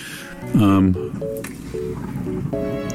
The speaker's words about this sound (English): There's a toilet flushing. There's a toilet flushing.